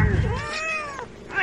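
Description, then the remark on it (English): A single drawn-out cat meow, from one of 18 cats kept in a room for breeding, with a rising and falling pitch, clear, with a faint low rumble of background noise beneath it. “But yeah, I've got 18 cats in here right now.”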